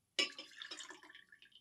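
A drink that has gone warm is dumped out in one sudden splashy gush that settles into a trickling, gurgling stream of liquid, fading over about a second and a half with no voices.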